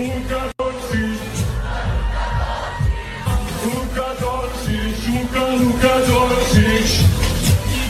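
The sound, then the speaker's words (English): A large arena crowd at a basketball game of Slovenia roars and chants continuously, a dense wash of many voices with rhythmic low pulses, steady and loud throughout after a brief cut near the start. “There was a section there you could hear me Slovenci. Like you could hear the crowd.”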